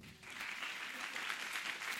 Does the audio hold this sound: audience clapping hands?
yes